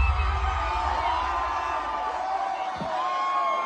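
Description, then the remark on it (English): A large crowd roars and cheers while many voices chant "We want Trump" together in unison for a rapper, a dense, steady wall of sound that holds at a constant loudness throughout. “Huge crowd, all chanting, we want Trump, to a very well-known rapper amongst the younger set,”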